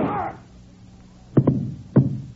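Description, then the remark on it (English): Gunshots ring out: two sharp cracks in quick succession, then a third a moment later, each followed by a brief echoing rumble. No one is speaking. “if you hadn't shot first”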